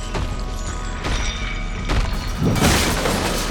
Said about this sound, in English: With a swipe of its mammoth talons, the griffin knocked the table to the side.